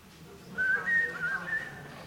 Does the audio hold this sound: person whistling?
yes